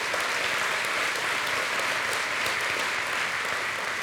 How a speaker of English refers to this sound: Let's give them all a big round of applause.